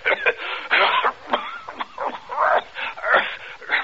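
A man coughs badly, a run of harsh, hacking bursts in quick succession with strained, wheezy sounds between them, fairly loud with no other sounds.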